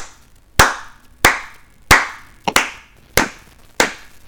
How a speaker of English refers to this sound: So I just had them clap a steady tempo, just...